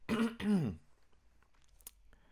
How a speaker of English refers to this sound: So this is the first one, which is cough, cough, clears throat.